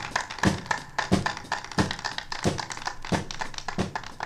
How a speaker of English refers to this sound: Here it comes. It's on the left now. It just went over. There it is. Now we're hearing the claps backwards. That's pretty cool, ladies and gentlemen.